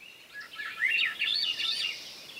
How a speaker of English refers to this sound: There's the flute-like song of a Swainson's thrush, a bird now wintering in Central and South America, maybe as far south as Bolivia.